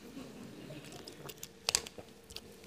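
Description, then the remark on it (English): Someone takes a quiet sip of water, with a few soft wet mouth clicks and a brief swallow in the middle; no one speaks. “Just get a drink of water because I'm going to get worked up again in just a moment.”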